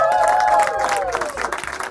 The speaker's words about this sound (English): Give them a round of applause one more time.